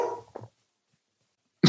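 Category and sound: animal, dog barking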